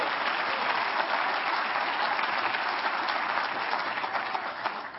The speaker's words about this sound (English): Give the Lord a hand clap, somebody.